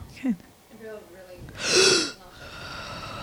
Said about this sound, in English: breathing that happens when we do work.